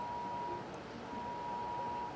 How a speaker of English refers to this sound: Oh no, your phones are going off. Amber alert.